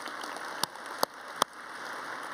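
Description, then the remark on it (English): A few scattered audience claps, just three sharp, crisp smacks spaced evenly about half a second apart over a steady low hiss, with no one talking, clapping at the news of 54 baptisms the previous week. “Yeah, you can clap at that.”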